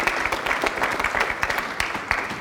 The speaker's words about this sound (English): Now, so please clap for them.